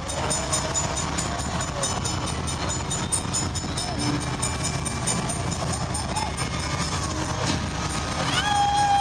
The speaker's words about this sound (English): Now, once the song was over, there was a video of a train pulling away from the station.